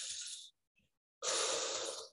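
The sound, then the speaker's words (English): Two breathy mouth exhales, a short one and then a longer, louder one after a brief pause, as a person taps their chest on the breastbone. A soft, rapid pulsing flutter runs beneath the second breath. No one speaks. “tapping your chest right on the breastbone, breathing out through your mouth.”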